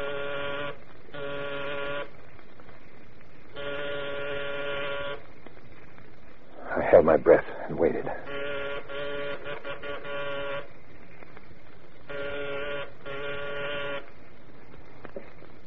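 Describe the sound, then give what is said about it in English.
An electronic doorbell rings repeatedly in harsh, buzzy bursts lasting a second or two each, separated by short gaps. A voice speaks briefly midway before the ringing resumes. “When someone did ring a bell, but it wasn't the kind of bell I had in mind.”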